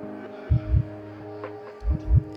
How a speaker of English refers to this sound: It's the drum beat.